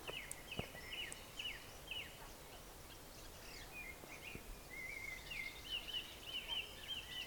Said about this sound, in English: Yeah, there you go. It's different bird noises are happening all the time.